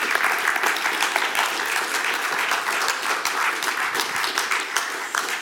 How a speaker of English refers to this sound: I was just checking. We do know how to clap. And it's one of the things God tells us to do to express our worship of the King.